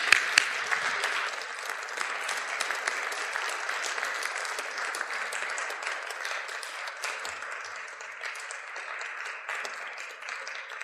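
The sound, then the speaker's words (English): A crowd applauds steadily for about ten seconds as weavers are welcomed to the front of the stage, a dense patter of many hands clapping at an even loudness that tapers only slightly toward the end, with no voices standing out. “So with a warm round of applause, please welcome the weavers right up here to the front of the stage.”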